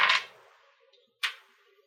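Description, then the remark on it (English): Dice rolled for an investigation roll clatter onto a hard surface in two separate bursts, each a sharp knock followed by a brief rattling decay, with a quiet pause between them and no talking. “Where'd my dice go?”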